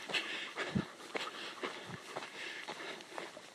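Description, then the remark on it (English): A dog pants close by in quick, steady breathy bursts, soft and rhythmic, feeling the effect of the heat on a walk along a path lined with ferns, with faint rustling or footsteps in the background and no one speaking. “My dog, Louis, Prince Louis, is staying close to me today.”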